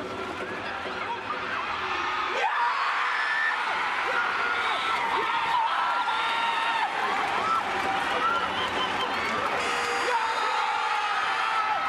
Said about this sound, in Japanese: シュートが決まった瞬間、そして勝利のブーザーが鳴った瞬間、もう本当に大歓声に